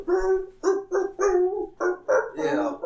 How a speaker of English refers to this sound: And nobody mentioned the barking dogs. The Bumpuses? No. The Bumpuses! No, the dogs that bark out.